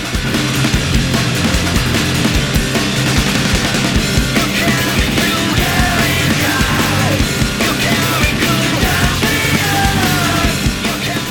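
A loud, dense stretch of punk rock: heavily distorted guitars and pounding drums at a steady, driving pace, with shouted vocals buried in the wall of sound.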